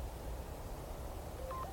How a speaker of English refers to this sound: Oh, there we go. That's the sound of the text message. The wild text message.